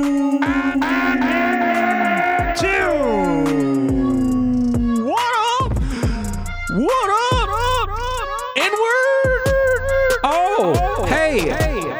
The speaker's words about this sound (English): Now there's echo. Like the echo. It's like I'm standing in the alleyway with the echo.